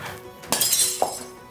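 Glass shatters with a sudden loud crash, bright tinkling shards spraying for about half a second before a smaller clink and fading fragments. No one speaks.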